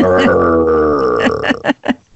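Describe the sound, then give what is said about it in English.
A person imitates a deep, lion-like purr: a low, throaty voiced rumble that holds steady for about a second, then breaks into a rhythmic series of short, pulsing growls. “Okay, let's hear your lion purr.”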